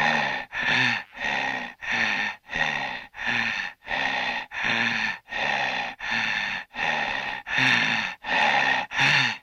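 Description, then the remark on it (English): A voice imitates the heavy, menacing breathing of a horror-film heavy breather, about fourteen loud, rasping breaths in a steady rhythm, with no talking. “Hello, it's me, the heavy breather from every horror film you've ever seen.”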